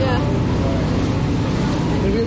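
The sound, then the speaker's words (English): A steady engine rumble and rushing water as a boat heading towards Flower Pot Island pushes through rough, choppy waves, with a muffled voice briefly audible under the noise. “The waves were pretty choppy.”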